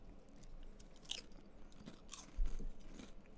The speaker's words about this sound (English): It's the best crunch of the three potato chips. It's kettle cooked. What do you expect?